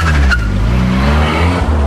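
A car pulls away with a steady low engine rumble and a brief tire squeal near the start, the motor droning evenly throughout with no voices.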